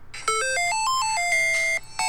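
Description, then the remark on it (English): A short, bright electronic video game startup jingle of about nine quick beeping notes stepping up and down in pitch, played from a phone speaker into a microphone, with no talking. “But when you start up the game, there's this little ditty that plays.”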